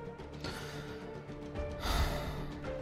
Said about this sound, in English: causing the room to grow noisy with gasps from the queen's many bearded accountants.